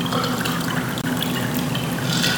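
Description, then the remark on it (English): Cold, unfiltered Chillicothe water pours steadily from a pitcher into a glass, a continuous splashing fill with a faint rising pitch as the glass fills, and occasional light clinks of ice. “Don't you like the sound when you're thirsty and that waiter or waitress takes the glass and pours that water?”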